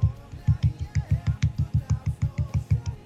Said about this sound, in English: But regardless, she's definitely pulling her weight in other ways. So clap for her.